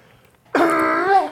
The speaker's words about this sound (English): Cough. What the fuck was that? It's a native call to his people.